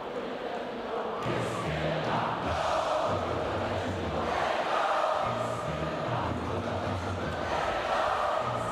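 A huge crowd sings together in unison, a dense, continuous wash of voices carrying a melody, loud and reverberant, with no single voice standing out.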